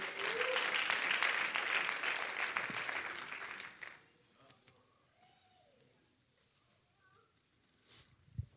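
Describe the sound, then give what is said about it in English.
An audience claps loudly and steadily for the Lord for about four seconds as people are seated, a dense wash of many hands, then the applause drops away abruptly to quiet murmurs and faint voices, with a sharp knock near the end. “Let's give the Lord another hand clap as you're seated.”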